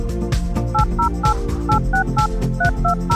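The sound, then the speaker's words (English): A quick run of about ten telephone touch-tone dialing beeps, each a short two-pitched tone in an even rhythm, played over a steady, loud musical background. “Did you hear those? Those touchstones are here to remind me, to remind you, that we have veterinarians on call at Dog Cancer Answers on our listener line.”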